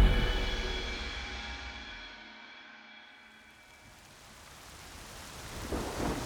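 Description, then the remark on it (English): A deep roll of thunder rumbles and fades, giving way to steady heavy rain hissing across a wide area at night, with a fresh surge of rumbling at the end; no voices. “As heavy rain shrouds the deepening night, soldiers are posted to block all routes out of the area.”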